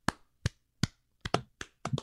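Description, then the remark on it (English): A slow clap: sharp, crisp hand claps spaced evenly at first, then arriving a little quicker and less regular, as if a second pair of hands joins in. About eight claps, no talking. “I would like to initiate a slow clap for Anissa and Casey for nominating themselves this week.”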